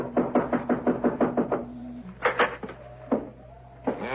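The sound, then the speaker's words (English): Someone raps quickly on the wooden front door of an old house, about nine sharp knocks in a steady run, followed after a pause by a few scattered, louder knocks and thumps. “I guess we knock. It's polite.”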